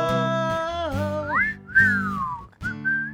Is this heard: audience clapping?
no